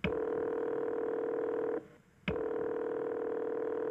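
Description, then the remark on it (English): A steady, buzzing telephone tone hums loudly for nearly two seconds, cuts out briefly with a click, then resumes unchanged, as a 911 emergency call to the police is being placed. No voices. “calls the police.”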